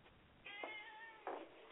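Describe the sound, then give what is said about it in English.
A cat named Corky meows at a Christmas party in a drawn-out, wavering call that starts at about half a second and carries a clear harmonic tone, followed by a brief louder burst near the end. No one speaks. “I can hear Corky is joining the Christmas party.”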